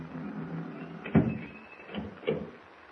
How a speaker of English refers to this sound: Close the door. Bolt it.